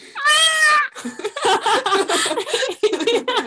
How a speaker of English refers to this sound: So I was like, you know what, I'm gonna bring it home, I'm going to see if I can trick my roommates into thinking that there's a cat.